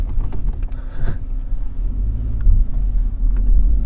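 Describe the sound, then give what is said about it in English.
A train rolls past with a deep, continuous rumble, a heavy low drone that holds steady for several seconds and swells a little toward the end. “There's a train kind of passing.”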